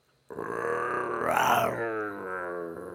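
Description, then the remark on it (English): A voice imitates a lion's roar, as Aslan from The Lion, the Witch, and the Wardrobe: one long, growling, throaty bellow that swells loudest in the middle, then trails off into a rumbling, buzzing groan. “Aslan, is that you? That is Aslan.”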